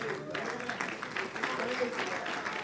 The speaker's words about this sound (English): Come on, let's stand together. Come on, let's stand together. Go ahead and clap your hands again.